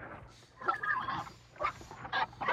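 Pigs feeding, with a jumble of grunts, snorts and short squealing bursts coming in uneven waves over a low background rumble.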